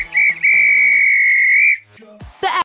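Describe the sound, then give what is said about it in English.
A referee's whistle blows loud to end the match, a quick short blast followed straight away by one long, sustained shrill tone, then a few faint clattering sounds after it stops. No talking. “If this were a real bit of extra time, this is when the ref blow the whistle because it's finished.”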